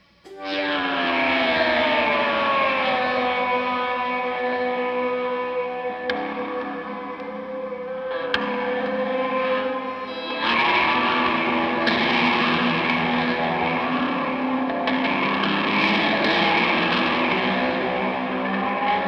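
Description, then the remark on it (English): Electric guitar played with a handmade clay slide, its sustained notes gliding smoothly in pitch through several phrases, with a loud, overdriven, echoing tone and no talking. “she decided to make me some out of clay to see if they'd work”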